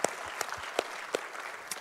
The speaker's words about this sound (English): We love Summit Blairsville. We love the Blairsville community. And can we give them a round of applause this morning? We love you guys.